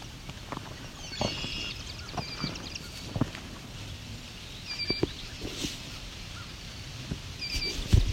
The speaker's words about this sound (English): Those ringing calls are swamp sparrow.